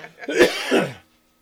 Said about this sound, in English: I apologize for my coughing.